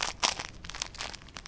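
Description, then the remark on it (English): Crinkling and crumpling, like a sheet of plastic or paper being scrunched, in a quick irregular series of crackly bursts over a second and a half, fairly quiet, with no talking. “It's a crinkle, Aaron. It's a crinkling sound.”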